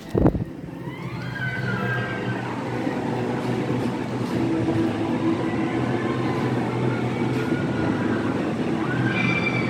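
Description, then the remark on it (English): A mousetrap-style roller coaster, apparently Goofy's Sky School in the Pixar Pier area of Disney California Adventure, heard outdoors from a balcony, rumbles steadily along its track, with thin, high wheel squeals sliding in and out over the continuous low roar. Nobody speaks. “But it's a mousetrap style coaster.”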